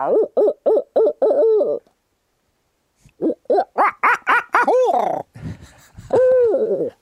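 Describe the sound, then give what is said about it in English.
A man imitates a barred owl hoot with his mouth alone, not a call device: a rhythmic run of loud hoots, a pause, then a longer rising-and-falling series ending in a drawn-out, wavering call. “I want to hear your barred owl hoot.”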